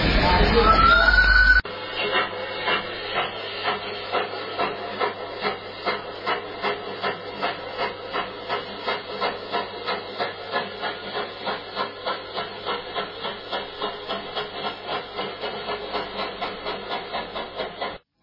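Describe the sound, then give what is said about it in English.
A steam locomotive hisses and chuffs in a steady rhythm of even puffs, about two per second, after a brief loud burst of steam at the start, with a constant low rumble underneath. “With Dave enjoying the delights of railways and the joy of steam, we come to the end of this edition of Outlook.”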